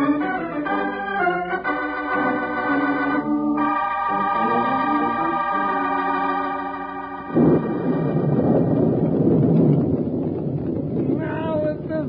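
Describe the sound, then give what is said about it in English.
Harmonic, music-like tones give way after about seven seconds to a loud, broad rush of heavy Texas storm wind that roars for several seconds, fading as tonal sounds return. “Riding across the rugged reaches of Texas, they were overtaken by a heavy storm”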